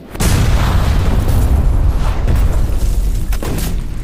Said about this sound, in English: Our guys are getting far too close with ordnance. We don't want a blue on blue.